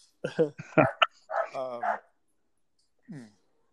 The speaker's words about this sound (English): So we got a little dog that goes crazy when you start filling up a food bowl. So, oh my goodness. Sorry, y'all. You're gonna have to listen to that for a minute.